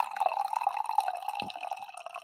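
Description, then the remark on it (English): Coffee pours steadily into a cup, a continuous trickle with a rising liquid tone and a brief gurgle near the middle, no talking. “I'm going to get a coffee pour, get your mind right here”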